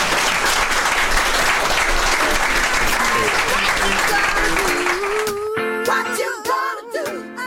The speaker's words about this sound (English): A big round of applause, please.